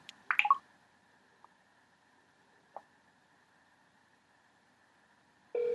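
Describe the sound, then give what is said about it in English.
A phone call being placed on an iPhone by double-tapping a contact's number for Vision Australia: a brief burst of beeps, then a faint steady electronic tone with a couple of soft clicks, ending in a sudden louder ringing tone. No one speaks. “And again, that was using my iPhone to actually make the phone call”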